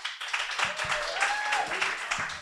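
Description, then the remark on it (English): Audience members who have already paid their checks applaud steadily, a dense crackle of many hands clapping at once, with a few faint whistles rising through the noise for the full stretch. “So round of applause if you've already paid your check.”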